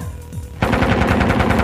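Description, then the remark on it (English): A loud burst of submachine gun fire erupts abruptly after a brief quieter lead-in, rapid repeated shots hammering in a fast, steady rhythm without pause, as a thug sprays bullets at a woman. “The lead thug turns and sprays bullets at Natasha.”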